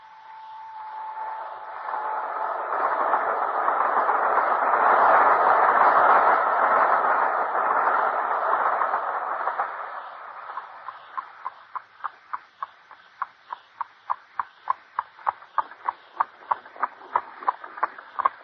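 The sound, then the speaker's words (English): A steam train running on rails: a broad rushing roar swells and fades, then settles into a steady, evenly spaced chugging rhythm that carries on loud, with no voices. “Our only hope is to take the very first train in the morning.”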